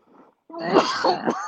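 A soft breathy rasp comes first, then a loud, rough stretch of throat clearing and coughing, one strained burst rolling into the next for about a second.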